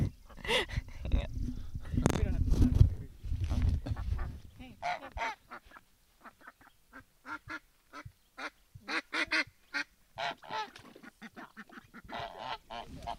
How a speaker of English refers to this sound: Okay, we got a little police action going on here. The bigger goose just got chased out of the duck the duck room. The gray one is allowed to stay.